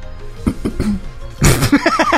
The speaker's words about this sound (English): … clearing her throat is the best response to that.